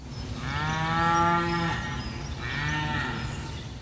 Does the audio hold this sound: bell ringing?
no